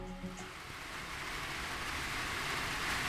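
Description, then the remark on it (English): Heavy rain pours down steadily at a facility for sick koalas in Richmond, on the fringe of Sydney, Australia: a dense, continuous hiss that fills the whole scene at an even, fairly loud level, with a faint tonal sound briefly at the start. “It's pouring with rain, my feet are muddy, and I'm worried about my recording gear.”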